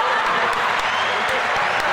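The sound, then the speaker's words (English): A crowd applauds, many hands clapping in a dense, steady wash of sound that stays fairly loud and even for the full two seconds. “Round of it applause.”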